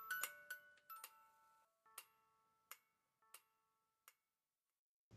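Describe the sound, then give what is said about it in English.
A toy clock, a type first developed in the 1960s to teach concepts about clocks and time, ticks in a steady series of sharp clicks while a tinkly electronic melody of a famous song plays along, quiet, with no voices, ending abruptly. “they were designed to teach you several important concepts around clocks and time, all the while playing the famous song”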